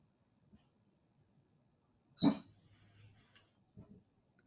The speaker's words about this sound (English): The dog barked some more.